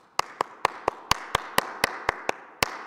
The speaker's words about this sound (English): So even though I won't be able to hear you right now, would you give God a clap offering? Would you let these be the instruments that we use to clap for God?